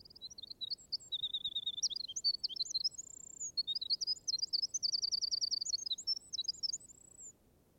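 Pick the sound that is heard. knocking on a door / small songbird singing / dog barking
small songbird singing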